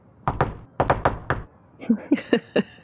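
A jaunty knock on a door: two quick raps, a short pause, then four more in a bouncy rhythm, fairly loud, followed by a voice speaking.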